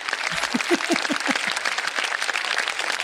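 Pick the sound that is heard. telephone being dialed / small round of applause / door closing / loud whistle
small round of applause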